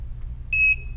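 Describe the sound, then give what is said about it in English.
A Braille Me refreshable braille display powers on with a single short electronic beep, a clean high tone lasting about half a second over a low steady hum, clear with no talking. “Here's the Braille Me. Now, it doesn't do as much with its dots when it comes on, so we'll pan the keys, and you can hear it.”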